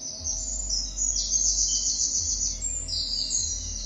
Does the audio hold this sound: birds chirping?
yes